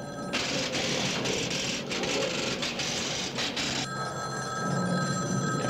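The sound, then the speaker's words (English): An old-fashioned telephone bell rings loudly and continuously, a bright metallic jangle that pauses briefly once before resuming, with no one speaking. “Your phone's ringing.”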